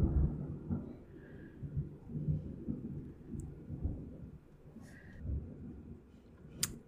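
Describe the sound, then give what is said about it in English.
Low, rolling thunder rumbles on for several seconds, swelling and fading in deep waves, with a few faint higher crackles on top and no one speaking. “Fuck you, thunder.”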